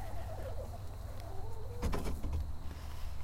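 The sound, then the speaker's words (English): Chickens cluck and murmur in a short, irregular run of soft calls, with one sharper squawk in the middle, over a steady low outdoor rumble. “Okay, here come the chickens.”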